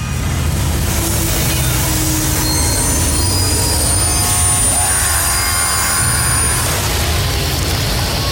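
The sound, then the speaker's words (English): A train wreck sound effect: train wheels shriek with sustained, high metallic squeals over a heavy rolling rumble, loud, continuing steadily for several seconds with no voices. “And the train wreck continues.”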